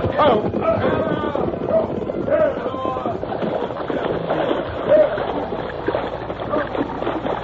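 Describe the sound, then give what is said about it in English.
Troopers' horses gallop out of the woods, down a bank and splash across a river, a loud continuous churn of water and hooves, with indistinct shouting voices mixed into the rush. “Once more, the troopers thundered out of the woods and down the bank to the river.”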